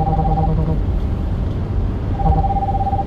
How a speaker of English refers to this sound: Sorry about that. I had a phone call and I don't know why it was ringing.